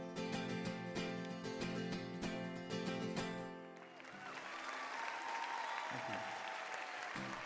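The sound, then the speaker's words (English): Loud music with a steady beat cuts off at a live concert, and the large concert crowd breaks into sustained cheering and clapping that carries on to the end, with scattered whoops rising above the applause. “So some of those cheering is from one of his concerts.”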